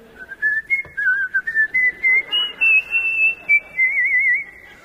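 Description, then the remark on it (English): Someone whistles a bright, bouncy marching tune, a clear run of short, distinct notes with a trill near the end, loud, with no talking. “I could hear them faintly singing and whistling. Hi-ho, hi-ho, it's off to work we go.”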